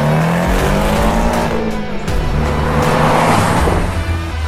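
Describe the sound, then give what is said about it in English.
A car engine revs hard and climbs in pitch as the driver puts the pedal down and accelerates, briefly dropping at a gear change around two seconds before pulling again, loud throughout with no one speaking. “My car's gonna feel slow as balls after this, I'll tell you that. Pedal down!”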